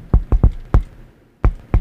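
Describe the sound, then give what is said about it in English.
Knocking on a door: a quick three-rap burst, a single knock, then a pause followed by two more raps. The knocks are solid and bassy, with no voices. “Knock on the door, like... As one does.”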